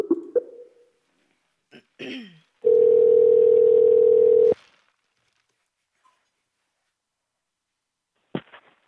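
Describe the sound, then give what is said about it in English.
A telephone dial tone hums for about two seconds as someone calls back a person who hung up. The tone is loud, flat and steady at a single mid pitch. It cuts off sharply and is framed by brief clicks and handling noises, with no talking. “I think she hung up. Guys. Okay. Let's call her back.”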